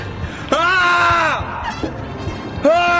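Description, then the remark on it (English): A voice lets out two loud, drawn-out yells, the first held for nearly a second and the second starting near the end, imitating a painter who screams with each paint stroke. “And every time he does a paint stroke, he screams.”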